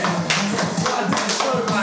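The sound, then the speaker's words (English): A group of friends does the upward overhead clap, similar to the Minnesota Vikings clap. Several sharp claps come together in a steady, quick rhythm over about two seconds, with talking and crowd voices continuing underneath. “Oh, now our friends are engaging in the upwards clap, similar to the Minnesota Vikings clap.”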